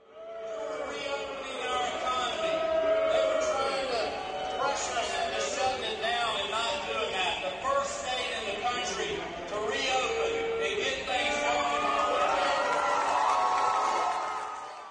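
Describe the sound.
A large rally crowd at Jekyll Island roars and shouts nonstop for about fifteen seconds as Brian Kemp takes the stage, many overlapping voices blending into a loud, steady din with occasional individual yells rising above it.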